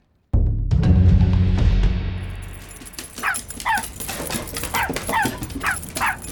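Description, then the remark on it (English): A dog lets out a loud, low, drawn-out bark-like cry, then a quick run of about six high, yelping whimpers in an uneven rhythm, with no talking. “You are the worst dog.”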